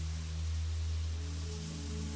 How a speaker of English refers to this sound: So let this rain, this soothing rain, wash away any anger, resentment, or frustration.